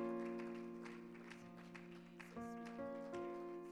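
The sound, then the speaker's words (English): An audience claps their hands to the Lord at a night service in a loose, uneven patter over a steady, sustained keyboard chord that shifts to new notes partway through. No one speaks. “Let's give him an applause. Let's clap our hands to the Lord tonight.”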